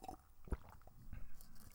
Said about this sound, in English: Okay. Your slurping noises? Yup.